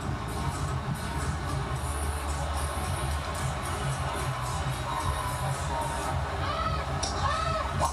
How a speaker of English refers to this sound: Somebody screamed right in this backswing. Oh, man. I mean, that was awful.